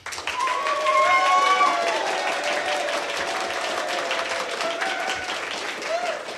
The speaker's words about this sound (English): the only fair way is by round of applause